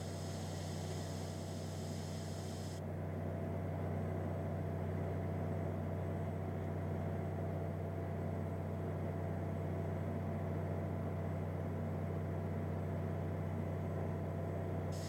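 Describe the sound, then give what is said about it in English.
A drill rig's engine drones steadily as it pushes the last piece of well casing, standing about 6 feet above the ground, down into the bedrock before it is cut: a constant loud low hum with strong tonal bands and no talking. A faint high hiss drops away after the first few seconds. “So I'm gonna use the drill rig to help push the casing the rest of the way into place before we cut it.”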